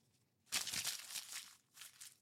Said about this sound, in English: I'm gonna crumple it. And then...